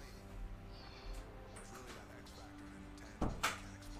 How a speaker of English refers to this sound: So let me close my door.